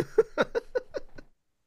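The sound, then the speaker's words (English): A voice imitates a cat, Felix, with a quick run of six short, clipped meow-like yelps, evenly spaced and fading slightly, then stopping into silence. “Well, that meow carried with it a bit of a yes.”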